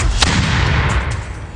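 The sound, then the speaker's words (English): A loud, booming explosion sound effect played from a soundboard rumbles with heavy low-end energy and a sharp crack near the start, then a sustained roar that slowly fades. No voices are heard. “So you rock to the folks at Radio Shack, and of course, let me get into the you rocks explosion.”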